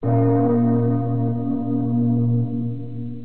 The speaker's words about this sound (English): The floor spiderwebbed, but instead of the crunching, cracking sound I expected, the floor rang like a gong. Like a bell.